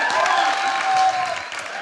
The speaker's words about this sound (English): Oh, I'm trying to... Can you clap for me, please? I feel better.